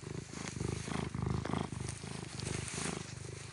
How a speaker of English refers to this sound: Now look at you laying down here like this. You got all that pretty fur. You should see how crazy this cat is. Just lays down right here in the dirt. Listen to this purring.